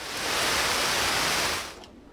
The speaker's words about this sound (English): it's still raining. How come raining so loud outside the window?